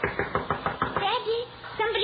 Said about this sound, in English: Don't answer it, child. But they're knocking. Get away, I tell you.